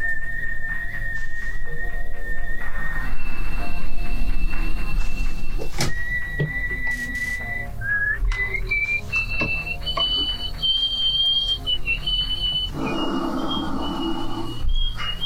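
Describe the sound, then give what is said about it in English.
A woman's world-record loudest nose whistle holds a high steady tone, stepping between pitches and sliding upward, with brief pauses and breathy noise underneath, heard alone without talk. “she earned the record for the loudest nose whistle in the world”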